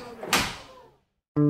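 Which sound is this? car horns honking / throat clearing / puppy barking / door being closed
door being closed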